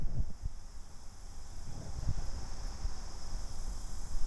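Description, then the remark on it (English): A steady, high-pitched drone of chirping insects in a very rural place runs unbroken through the whole clip, with soft low rumbles and rustling underneath and no one speaking. “sitting in a very rural, bug chirpy place. Don't know if you can hear that.”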